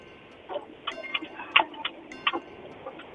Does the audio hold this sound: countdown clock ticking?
yes